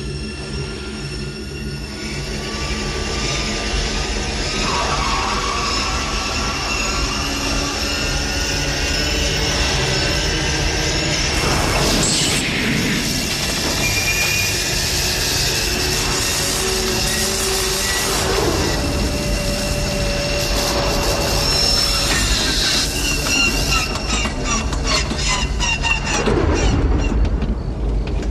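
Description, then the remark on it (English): A loud, steady mechanical roar coming from the basement of a house, with high whining tones that shift and swell, like a jet engine spooling up, continuing unbroken for the whole stretch with no voices. “It sounds like they're starting up a jet engine in the basement, and then smoke comes out and, you know, of a pipe in the ceiling”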